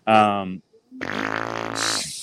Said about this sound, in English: Shower fart game of the week.